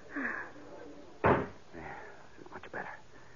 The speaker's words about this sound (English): Here, this door opens onto it.